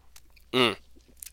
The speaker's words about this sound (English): I'm going to take a little sip. I'm going to pause here.